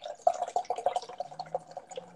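Volt Brewing Company Nitro Sweet Potato Ale is fast-poured steadily into a glass, a continuous splashing trickle with bubbly, dripping textures for a couple of seconds, with no voices.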